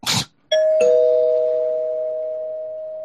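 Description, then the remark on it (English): After a short rustling burst, a bell rings two chiming notes in quick succession, high then lower, like a doorbell ding-dong, and the tone rings out clearly and slowly fades. No one speaks. “One last time with the bell.”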